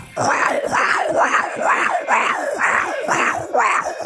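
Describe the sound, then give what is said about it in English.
A person rapidly growls in a quick, steady series of about nine loud, rasping vocal bursts, each rising and falling in pitch, imitating an animal's growl with no talking, in a contest to do ten growls in ten seconds. “10 growls, 10 seconds.”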